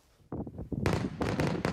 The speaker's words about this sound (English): We honor our freedom with patriotism and pyrotechnics.